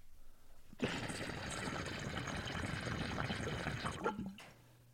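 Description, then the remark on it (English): Water bubbles and gurgles vigorously inside a King Bub glass bong with stacked discs, a dense, steady burbling that starts abruptly, runs for about three seconds, then cuts off sharply. “I love how much the water bloops on the King Bub, though, because of the way the discs are stacked like that and the way it sounds.”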